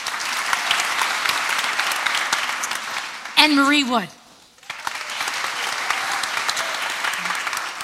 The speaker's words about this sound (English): You're getting applause.